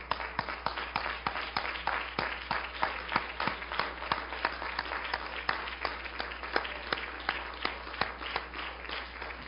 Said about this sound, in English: Stand with me. Let's give the Lord a hand clap as you stand.